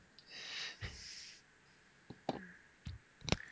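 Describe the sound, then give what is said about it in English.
Someone takes a drink: a soft breathy inhale, then a few quiet wet clicks and swallows spaced over a few seconds, with no talking. “And I'm going to take a drink so I don't do my throat in”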